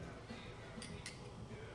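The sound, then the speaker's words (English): Two quick, bright clinks of glasses of beer touching in a toast, a fraction of a second apart, with low background murmur. “Let's toast. Yeah. Cheers.”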